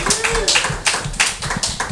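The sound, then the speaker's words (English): A brief round of applause from a small group, with quick, uneven handclaps for a couple of seconds and no one talking. “Round of applause.”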